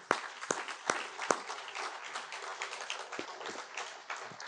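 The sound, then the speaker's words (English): An audience breaks into steady applause for young Air Force men and women, a dense wash of many hands clapping with a few sharper, louder claps standing out at the start, holding a fairly even level throughout. “these are the cream of the crop of the young men and women that this country has to offer, that we send out there to do the Air Force's business every day, and we need to be very, very proud of them, and I would offer them a round of applause.”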